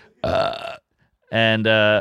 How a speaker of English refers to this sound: Burp, you get a red flag.